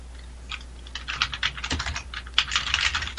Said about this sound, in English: Did you post? I was about to. I just finished typing. Hold on.